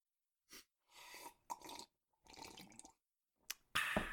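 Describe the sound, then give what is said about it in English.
Several short, wet slurping sips of apple cordial with pauses between them, followed by a louder breathy burst at the end. No one speaks. “Let's take a sip together.”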